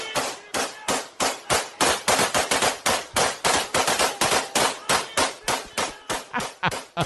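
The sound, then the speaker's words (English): Rapid bursts of AK-47 rifle fire, dozens of sharp, loud cracks in quick irregular succession with brief pauses, fired into the air outdoors at night in Russia by Khabib's fans celebrating. No voices are heard. “This was an Instagram post from Russia of some of Khabib's fans celebrating with their AK-47s.”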